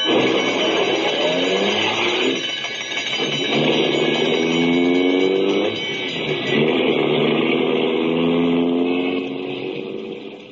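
An old ambulance engine revs and pulls away, its pitch climbing and dropping through gear changes, loud throughout with steady mechanical whine and no voices.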